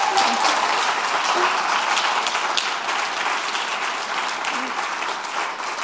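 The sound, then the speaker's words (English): Sustained audience applause, a dense wash of many hands clapping steadily at a fairly loud, even level throughout, with no one speaking over it. “Can we like give a massive round of applause?”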